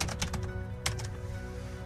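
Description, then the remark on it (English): Typing an email on a computer keyboard: a quick burst of sharp key clicks, a short pause, then a couple more taps over a low steady hum. “Sorry, I was typing an email”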